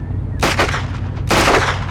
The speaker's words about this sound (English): You can't just start shooting out the window.